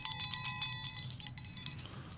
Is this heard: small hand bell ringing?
yes